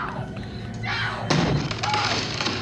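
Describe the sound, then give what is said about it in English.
A door being broken in: a sudden heavy crashing blow lands midway, followed by a rough, noisy rumble, with muffled voices and movement in the background. “it's The Shining when he breaks the door”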